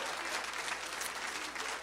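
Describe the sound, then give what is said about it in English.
An audience claps their hands together, a dense, steady wash of overlapping claps that holds at an even, fairly loud level throughout, with no voices standing out. “Come on, clap your hands and receive that right now.”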